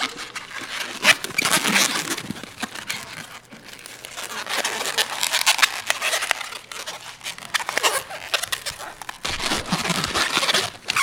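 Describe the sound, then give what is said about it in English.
An old rubber balloon being twisted and squeezed into an animal shape, forming the body and back legs, producing steady squeaky, crinkly rubbing and creaking for several seconds, with brief scrapes and short pauses between twists. “This is actually the part that sort of every animal you make out of balloons.”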